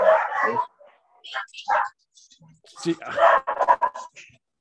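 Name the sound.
dogs barking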